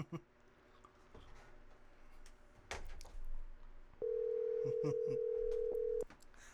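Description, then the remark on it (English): A telephone ringback tone sounds as a caller phones a woman back: one steady, clear two-second buzz-tone, preceded by faint background voices and a few soft clatters. “I'm just going to call her back.”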